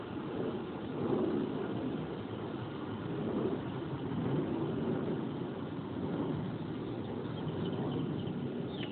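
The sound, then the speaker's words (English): A steady, broad engine drone of an airplane passing overhead, a continuous low rumble that swells slightly and holds level for several seconds with no voices. “And that is an airplane flying above.”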